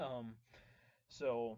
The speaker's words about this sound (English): Forgive me for yawning.